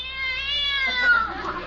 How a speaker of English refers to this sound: We've got to get him off the car, Bud. You go around the other side and I'll shoo him from here. Go on, cat. Scat.